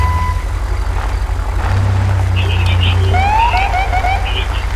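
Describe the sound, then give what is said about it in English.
Short, sweeping electronic chirps from a police cruiser's siren horn sound in quick succession over a heavy, steady engine rumble, moderately loud. “Really don't need my siren horn, but okay.”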